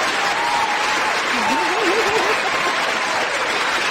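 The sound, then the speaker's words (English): Steady, dense studio crowd applause with cheering throughout, loud and sustained. A few whoops and a rising-and-falling voiced cheer stand out briefly in the middle. “I'm going to bring out the crowd for this one, okay?”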